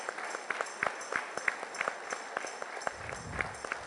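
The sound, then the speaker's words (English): A crowd claps for their good parents in a steady, fairly even rhythm, sharp hand claps repeating about twice a second over a dense wash of applause, with a low murmur rising near the end. “So, brethren, what I'm saying, if you have been blessed with good parents, can you clap for them wherever they be?”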